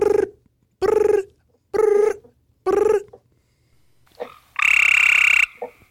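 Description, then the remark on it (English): A person imitates a gray tree frog call with four short, buzzy trilled calls in an even rhythm, loud, followed by a longer, higher-pitched trill. “It's not, you know, the gray tree frog sounds exactly like the Eastern American toad. It's just much shorter sound.”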